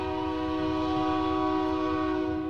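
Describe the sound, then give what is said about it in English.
A passing train's horn blares in one long, steady, loud chord over a low rumbling of the train, and its little bell rings too, with no talking. “I don't have to be nice to trains here. 3 cheers for the Iron Horse.”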